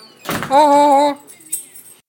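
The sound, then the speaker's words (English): A front door being unlocked and opened as someone arrives home: a quick rattle of keys and latch, then a drawn-out creaking groan of the door swinging, ending with a faint click. Fairly loud. “All right, I'm at the door. Let's see what happens.”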